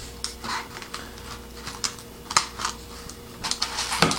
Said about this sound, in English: All right, let's see what the directions say. Remove lid and cheese sauce pouch. Set aside. You will see loose white powder in the pasta. This is necessary. All right, add water to fill line inside cup. All right, so here we go, taking this off.